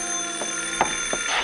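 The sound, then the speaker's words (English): A telephone rings on its own, a steady electric bell tone broken by rapid metallic clatters that repeat several times in quick succession, moderately loud. “I stayed close to the phone, and what seemed like hours later, it began ringing again.”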